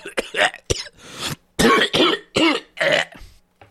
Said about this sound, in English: what was that cough?